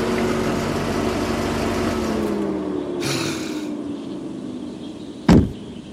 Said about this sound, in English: Ralph Ansbach slammed his car door shut.